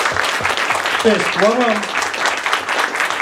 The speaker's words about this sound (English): Clap it up for that one time. Clap it up.